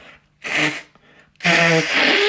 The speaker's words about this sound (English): I have to blow my nose for a moment.